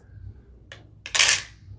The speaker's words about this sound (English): Here's big paper clips. And I use a lot of big paper clips, so let me put these in the front.